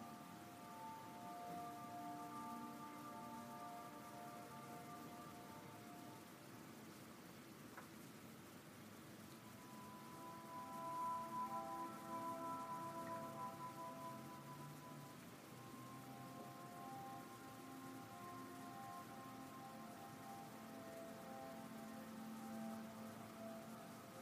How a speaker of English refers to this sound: Hear the bubble of the water fountain, the water splashing down below.